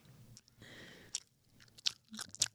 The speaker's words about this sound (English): If you don't stop chewing it.